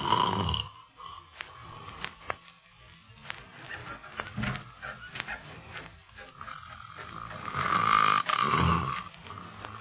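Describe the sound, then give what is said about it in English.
Loud, rasping snores from a sleeping man, rising and falling in slow rhythm with a couple of heavy, rattling breaths, with no talking. “The way he snores, you should be glad he's in another room.”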